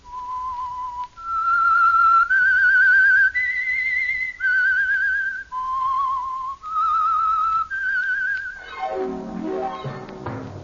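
A lone whistled signature tune of The Whistler mystery drama, presented by Meisterbrau: about eight sustained, wavering notes moving up and down, clear, followed by a descending swooping tone at the end. No voices.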